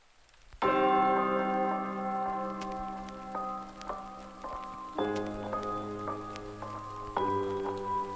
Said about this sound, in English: It's raining.